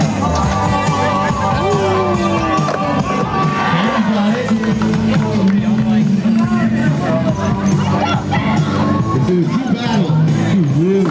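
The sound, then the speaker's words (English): A dense, steady crowd hubbub of many overlapping voices, with occasional whoops and shouts rising out of the babble, loud and continuous throughout. “We got the crowd live too.”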